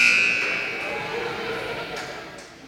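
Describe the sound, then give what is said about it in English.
A loud, harsh game buzzer blasts at the start, then trails off into a steady wash of crowd noise that lingers for a couple of seconds. “Guys, I'm afraid I can't hear after that buzzer.”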